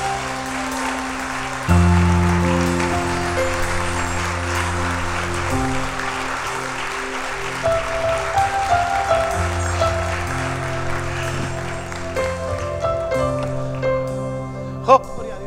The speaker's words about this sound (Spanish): Ponte de pie y dale un aplauso al Rey de Reyes.